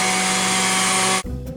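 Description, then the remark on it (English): A blender at Orange Julius in Poison Creek Mall roars at full speed, a loud, steady whir with a droning pitch, then cuts off abruptly after just over a second, leaving a lower fading rumble. “Okay, well, I'm getting the signal that they are getting ready to turn on the blender over at Orange Julius”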